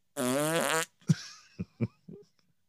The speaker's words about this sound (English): And I'm like, just fucking fart.